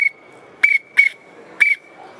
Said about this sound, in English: but also another key tool is a whistle, right? A widgeon whistle. Simple pintail whistle.